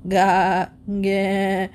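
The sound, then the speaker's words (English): A sheep bleats twice in quick succession, two loud, wavering, nasal calls separated by a brief pause, with no other sounds around them. “"Water!" bleated the sheep.”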